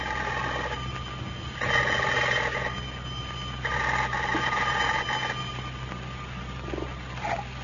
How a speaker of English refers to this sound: As we look in on Pine Ridge today, we find Abner alone down at the Jot'em Down store. The telephone is just ringing. Listen.